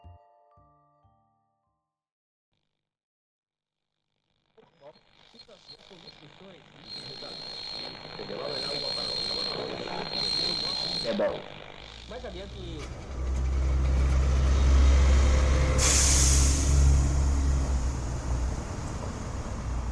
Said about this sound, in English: So, I'm standing here at a bus stop. It's nothing special, it's just a bus stop. A crooked little sign that reads Denny Street and a list of bus times.